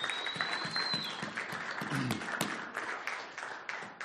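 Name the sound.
audience clapping and cheering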